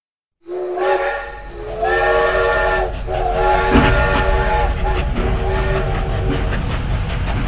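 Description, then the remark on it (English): A train rumbles and hisses while its steam whistle sounds several long, loud blasts in a row, the chugging noise continuing steadily underneath throughout. “The space train flew through space, winding around a floating gas station and over a red moon.”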